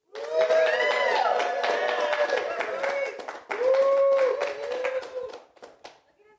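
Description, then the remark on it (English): An audience claps and cheers for several seconds, with scattered hand claps mixed under rising and falling whoops and voices, fading out near the end. “Turn and look at them and see if they clap.”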